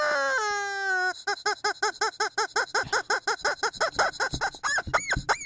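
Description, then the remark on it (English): A squeaky rubber chicken dog toy lets out a long falling squeal, then a fast, steady run of short, shrill honking squeaks, loud and close, ending with a couple of stretched wails. “Check that chicken.”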